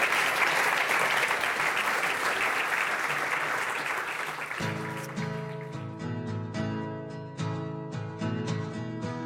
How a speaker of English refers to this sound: All right, let's give them a round of applause for getting through the...